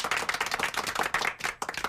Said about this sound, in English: Johnny, do you have a clapping machine that we can go, yay, and clap sometime during this segment?